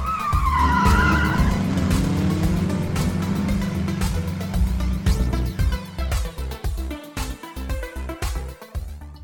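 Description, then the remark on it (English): Car tires screech loudly with a rising, wailing squeal over a roaring engine as a foot slams on the gas pedal, followed by a series of sharp thuds and impacts that trail off. No one speaks. “You see all the gas pedals and the foots slam on the gas pedal and cuts to black as you hear tires screech.”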